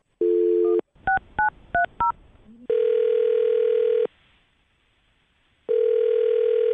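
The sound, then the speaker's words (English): A brief dial tone, then four quick keypad beeps pressed in a steady rhythm, followed by long, loud, even telephone tones separated by a pause of near silence, as a radio host dials a woman's phone number for a second date update on Brooke and Jubal in the Morning. “All right, well, I'll dial her phone number right now, see if we can get her on the phone and get your second date update.”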